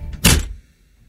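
An Amazon delivery man shuts a door with a single solid thunk, preceded by a faint click of the latch, then a short fading rumble. Fairly loud, with no voices.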